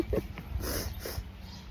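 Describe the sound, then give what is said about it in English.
A female dog named Kuma, tied onto the owner's arm, whimpers softly, a few short, thin whines over rustling, breathy background noise. “I've got my dog tied onto my arm here.”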